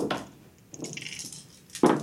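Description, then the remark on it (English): Dice clatter and tumble across a tabletop as players roll initiative: a quick click, a stretch of light rattling as they roll, then a louder sharp knock at the end. No one speaks. “I need everyone to roll initiative.”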